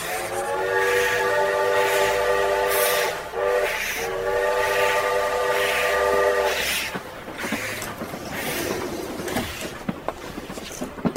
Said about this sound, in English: Chris and I boarded the train and were lucky enough to find an empty car.